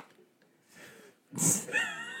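After a quiet, breathy stretch, dogs burst into barking: one loud, sharp bark followed by higher-pitched, drawn-out yelping that carries on.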